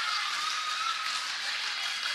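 A steady round of applause, a dense wash of many hands clapping together at an even level for a couple of seconds, with no voices over it.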